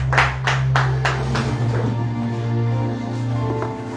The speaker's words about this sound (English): I want us to appreciate the praise team. Let's give it up for them, even as we can take our seats in the presence of God. Let's clap for the praise team one more time.